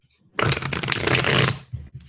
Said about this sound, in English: I'm getting clunked. Some good shuffling sound effects. Yeah. Now they can picture what's going on in their heads.